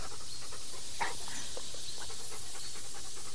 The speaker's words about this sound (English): What is that sound? Wait, are those snakes?